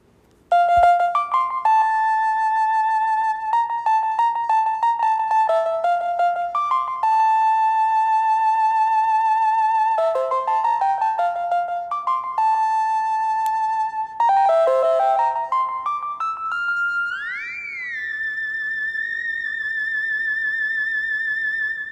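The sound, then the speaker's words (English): A synthesized melody played on a MIDI keyboard plugged into a computer via USB, using GarageBand: steady, bright electronic notes stepping up and down in a mid-high range, with a rising pitch bend into a long held final tone. “So, and then this is the melody I came up with.”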